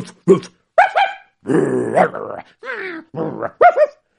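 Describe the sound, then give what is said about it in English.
A person's voice imitates several dogs, with a handful of short, sharp barks and a longer rough growl in between, loud, one burst after another. “And it was many dogs there.”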